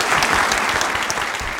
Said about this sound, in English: We thank you for making the journey to Canberra, and we just want to now express our thanks with a good round of applause.